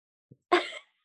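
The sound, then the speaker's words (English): A pet dog, a Belgian shepherd named Ixchel, in Puerto Morelos, Mexico, lets out one short, sneezy snort or yip, preceded by a faint little huff, then silence. No one speaks. “Yeah, that's my puppy child, Ixchel, which is the goddess of fertility in Mayan.”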